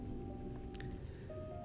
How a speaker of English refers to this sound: It is a rainy Friday here in Michigan, at least in my area.